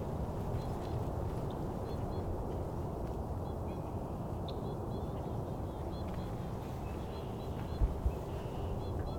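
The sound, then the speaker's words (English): Faint white-winged crossbill calls: short, high chip notes repeated irregularly throughout, sitting above a steady, low rumbling background noise, as one crossbill flies over and another calls. “Here we go, white wing crossbill. One flew over, another one's calling.”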